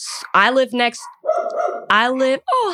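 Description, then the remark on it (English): Dogs bark loudly in several drawn-out, whiny bursts, with a rougher, growling stretch in between; the yowling barks come in two clusters separated by short pauses. The dogs are reacting to cars pulling up and stopping in front of a house next to a school. “My dog can hear them going crazy.”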